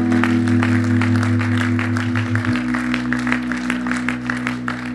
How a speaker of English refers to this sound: Let's give her another clap. It's awesome.